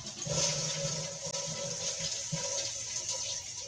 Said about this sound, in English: So we're going to wrap up our bathroom reading. Sitting on a toilet. Now flush.